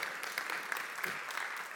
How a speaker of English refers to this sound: Just give yourself a hand of applause just for being here on Sunday.